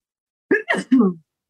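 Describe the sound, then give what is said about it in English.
A single sneeze, voiced and drawn out in three quick bursts, ah-ah-choo style, with a sharp breathy middle burst and a falling tone at the end. No other sounds. “Bless you. Thank you.”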